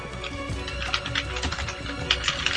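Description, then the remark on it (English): Rapid, irregular clicking of keys on a computer keyboard as someone types a post, with a steady low hum or faint music running underneath and no talking. “I just finished typing.”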